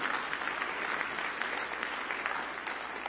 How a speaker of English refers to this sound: I love that. Everybody over 60 clapped.